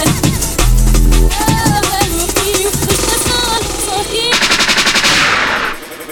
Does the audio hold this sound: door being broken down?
no